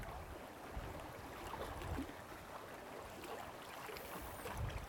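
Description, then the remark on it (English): Steady flowing water rushes and burbles continuously at a soft, even level, with small splashes and gurgles rising through the wash and no voices present. “If you can hear the water, just immerse yourself in the sound of the water.”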